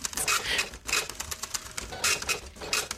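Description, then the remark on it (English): A small printer runs, its mechanism buzzing and clattering in quick rhythmic bursts as paper feeds through, with brief pauses between passes and no voices. “Printer's getting longer, I think. Yeah, we need to go paperless.”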